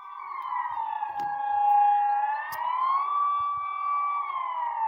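A warning siren wails steadily, its tone slowly rising and falling in a long sustained drone, heard through an open window with a few faint background knocks.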